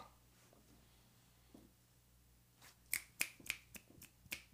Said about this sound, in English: Gotta like snap your fingers like I'm at an open mic night, man. I just read a poem.